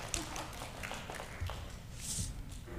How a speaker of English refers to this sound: You know what? Our clapping today has been very hesitant.